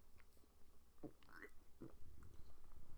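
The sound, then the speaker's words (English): Quiet mouth sounds of someone sipping a drink: a couple of short wet slurps and a swallow. No one speaks, and a faint low hum sits underneath. “Let me get a sip of drink.”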